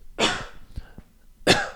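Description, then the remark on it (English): Two sharp coughs separated by about a second, with a couple of faint throaty sounds between them; no speech. “Multiple coughs. I don't just cough once.”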